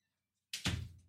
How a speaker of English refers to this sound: Oh, crap. Hang on. I got to shut this door.